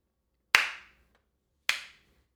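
Two sharp, loud hand claps spaced just over a second apart, a slow deliberate clap with a short ringing decay after each and silence between.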